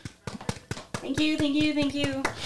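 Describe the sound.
A quick, steady run of about ten sharp hand claps, fairly loud, with a sustained cheering voice joining over the second half; the clapping sends someone off to a job interview.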